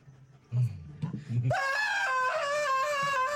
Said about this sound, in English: Closes the window, and screams.